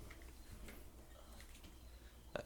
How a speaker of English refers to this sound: I love that you can hear the crickets. Yeah, it's for real.